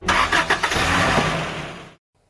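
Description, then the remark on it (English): A big cargo truck engine cranks with a few quick stuttering bursts, then catches and rumbles loudly for a couple of seconds before cutting off abruptly, with no voices present. “What does a truck sound like?”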